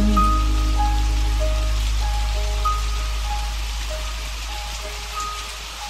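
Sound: rain falling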